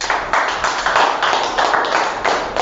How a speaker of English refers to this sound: Let's clap for God's grace.